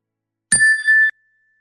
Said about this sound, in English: The meditation will begin with the ring of the chime and end with the ring of the chime.